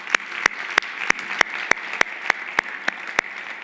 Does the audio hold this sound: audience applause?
yes